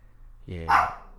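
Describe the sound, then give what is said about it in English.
A pet dog lets out a single sharp bark, fairly loud, rising quickly and then trailing off, over a low background hum. “That's my dog.”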